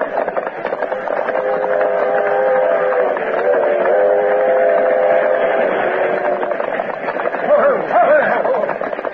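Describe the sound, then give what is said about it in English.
A westbound train roars past, a loud, steady rumbling rush lasting several seconds with a drawn-out whistle-like tone riding over it before it begins to fade. “He spurred his horse desperately and fired over his shoulder as the westbound roared toward him.”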